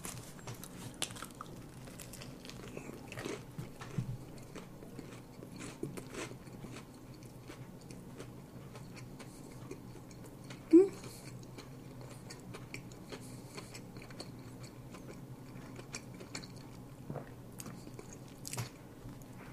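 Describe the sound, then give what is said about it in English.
Someone bites into a crispy-coated chicken sandwich with a big meaty chicken breast and chews, producing a steady run of soft crunches and clicky mouth sounds, with one sharper crunch partway through and no talking. “So yeah, looks kind of like it has the extra tasty crispy coating on it, so I can hardly wait to take a bite of this and check it out. So then, let's take a bite and tie into it, shall we?”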